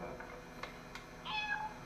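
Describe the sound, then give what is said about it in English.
A cat lets out a single short, high meow near the end, clear over a quiet hiss, preceded by a couple of faint soft taps. “Where did we get a cat?”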